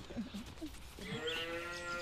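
A cow moos once, a drawn-out, harmonic call rising from about a second in and holding steady, preceded by some faint background shuffling and murmuring.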